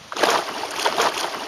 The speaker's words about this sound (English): That splashing, is from a video of a monster brown trout. But this trout isn't taking a fly, it isn't thrashing in a net. Actually, there's no rod or line or really any indication of angling in this video.